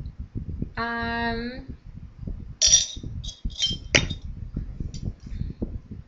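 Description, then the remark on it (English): Glasses clink together in a toast, a sustained ringing tone followed by several bright, sharp taps in quick succession, with low voices murmuring underneath. “And we can cheers that till the break of dawn.”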